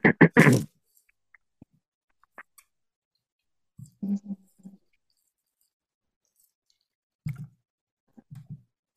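Someone bites into the last bit of a sandwich right at the microphone with a loud crunch, then chews in short, soft bursts separated by quiet pauses, with occasional small mouth clicks.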